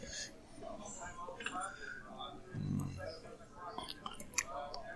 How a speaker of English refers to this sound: Let's get a little sip of the drink and see what we got here. See what you think.